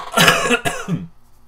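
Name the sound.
cough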